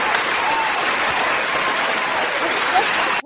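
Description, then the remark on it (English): An applause sound effect cued up on a show: a steady burst of crowd applause, dense clapping at an even loudness throughout, cutting off abruptly at the end. “Oh, we got to do the applause.”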